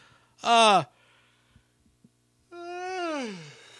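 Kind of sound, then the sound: human body sound, big yawn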